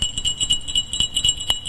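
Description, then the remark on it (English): A small metal bell, made from the metal of a defused landmine from the killing fields of Pol Pot, rings steadily, its bright, high, sustained tone pulsing with quick repeated strikes about four times a second, with no voices over it. “She said, if you're talking about hope and peace, ring this.”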